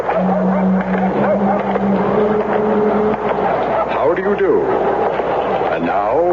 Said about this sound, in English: What's the trouble, lady? I don't know. My car seems to stall all the time.